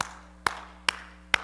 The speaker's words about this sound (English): You know, it hurts if I do it like that. In fact, my wife tells me, quit clapping so hard when I'm standing by. It hurts my ears because I'm going...